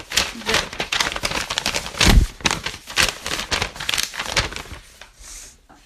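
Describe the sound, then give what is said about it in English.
Loud paper crumpling and rustling in a dense, irregular stream of crackly bursts, with a heavier handling thump near the middle before the crinkling tapers off. “This is why you don't have paper.”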